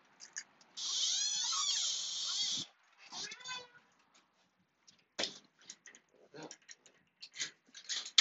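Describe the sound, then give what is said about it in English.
A door swings open with a loud, drawn-out squealing creak over a hissy rush, then a shorter second creak, followed by a scatter of sharp clicks and knocks. “This door is going to be loud.”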